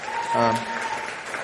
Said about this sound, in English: But I'm so grateful that we have a band that just, we have so many different ones that offer so generously and so well. And yeah, let's clap for them again.